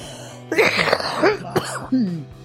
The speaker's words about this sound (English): I am ready, except for I'm going to cough. Hang on.